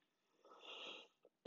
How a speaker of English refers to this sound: And I do apologize for coughing. I have a little tickle in the back of my throat right now.